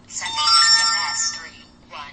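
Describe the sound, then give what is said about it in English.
A phone's text message alert chimes once as a test SMS arrives, a bright electronic tone lasting over a second, followed by a brief fainter blip near the end, heard clear. “So it said, you get the notification, and then it said test message, and it will read that for you.”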